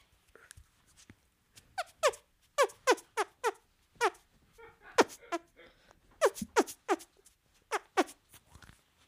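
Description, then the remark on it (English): A rapid series of squelchy hand farts, made by squeezing air between the palms. About a dozen and a half sharp, squeaky bursts come in uneven clusters, each with a quick downward pitch slide, and no talking. “Please pause for a hand fart.”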